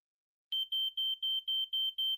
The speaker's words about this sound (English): You look at the tablet in front of you and tap on it. The screen lights up and a beeping sound emits from the tablet.